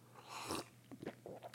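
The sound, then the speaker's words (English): A quiet slurping sip of vanilla-tasting coffee from a cup, a short airy burst followed by a few small wet mouth clicks and a swallow, with no talking. “Anyway, I'm gonna take a sip of my koof.”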